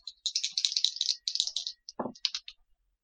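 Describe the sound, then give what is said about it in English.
A quick flurry of small hard clicks and clatters, new dice tumbling and rattling across a surface for about two seconds in an Arcana roll for a tabletop game, fairly loud, ending with a few scattered taps; the roll totals 11. “New dice. New dice betrayed me. I only got an 11.”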